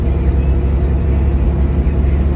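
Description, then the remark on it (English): A loud, steady low engine drone from a semi truck cruising in 10th gear at 32 miles an hour, rumbling continuously with no one talking. “See, we're in 10th gear right now, and we're going 32 miles an hour.”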